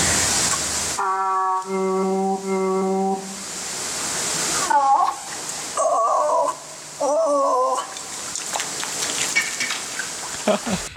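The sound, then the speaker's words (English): A seal reproduces human vowel sounds, a series of drawn-out, voice-like sustained tones then shorter gliding calls, over steady hissing water noise in the background, like splashing or rain. “So here's another one of reproducing vowel sounds.”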